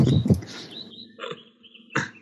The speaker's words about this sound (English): So, yes, those would be seagulls or pigeons.